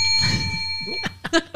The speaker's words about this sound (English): I didn't realize we need to not aggressively attack the bell. We do. That's cool. My apologies.